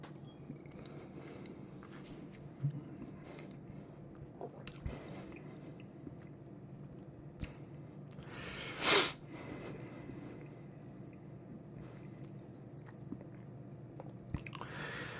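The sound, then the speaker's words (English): A quiet sip of whisky from a glass, the third sip, taken unaltered: soft lip and mouth noises, one brief louder slurp partway through, then faint tasting and swallowing sounds, with no talking. “So we'll go with sip number three, unaltered.”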